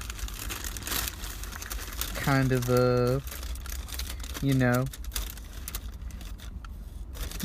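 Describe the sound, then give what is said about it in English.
Crinkly fish paper wrapping of a deluxe fish sandwich rustles and crackles continuously as it is unwrapped, with a person speaking briefly twice over the noise. “Now we unwrap this bad boy, and we got a little bit of lettuce coming out.”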